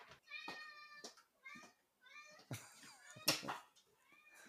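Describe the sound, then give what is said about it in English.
A male cat meows repeatedly, a run of drawn-out, rising and falling cries in quick succession, loud and clear with no other sounds around them. “Never be sorry for a cat interruption.”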